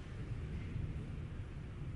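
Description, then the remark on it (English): Thunder rumbles low and steady, a deep continuous roll with no sharp crack, heard on its own without any voices. “The third thing, which ought to get every parent into the most sober mode, just like that thunder.”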